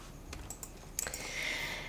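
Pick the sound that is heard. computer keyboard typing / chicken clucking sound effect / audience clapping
computer keyboard typing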